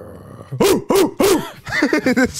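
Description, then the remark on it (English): A voice imitates a dog barking: three loud, separate woofs, then a quicker burst of shorter yapping barks, with no talking around them. “Off of, hit him with a bark real quick.”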